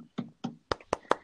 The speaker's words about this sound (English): Golf clap? Is a golf clap a thing in hockey?